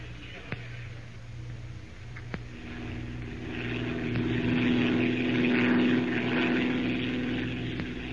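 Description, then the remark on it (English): A propeller airplane with an Arabian pilot at the controls drones steadily in flight, its engine hum swelling slightly louder midway and holding continuous, with a couple of faint clicks early on. “Clark, are you quite sure that Arabian pilot is, well, you know, competent?”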